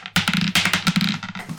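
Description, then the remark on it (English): Players roll their dice across a hard tabletop during a game: a quick clatter, a dense burst of sharp clicks that gradually thins out over about a second and a half. “Let's grab our dice as we all do our last gods.”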